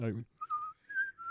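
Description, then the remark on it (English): A brief vocal sound, then someone whistles a short, eerie melody, a spooky TV theme tune, in a few sustained, sliding notes, clear, with nothing else behind it. “I shouldn't have, because you can whistle better than me.”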